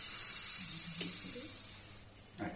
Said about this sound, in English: In case you missed it, in polite society, this is what a champagne bottle being opened sounds like. Nowadays, you don't pop. It's not the done thing. It's not etiquette. You have a little hiss, and the gentle hiss of the anticipation